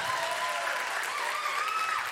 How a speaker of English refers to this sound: You can applaud my wife. That'd be great.